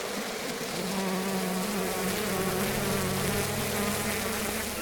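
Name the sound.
swarm of bees buzzing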